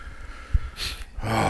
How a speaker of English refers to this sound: I'm sorry. One of our guys is coughing here.